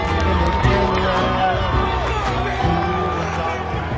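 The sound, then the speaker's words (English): A dense, steady roar of a fight crowd in Lincoln, Rhode Island, fills the whole stretch, with cheers, whoops and overlapping voices blending into a loud, continuous wash with no pauses. “Listen to the crowd here in Lincoln, Rhode Island.”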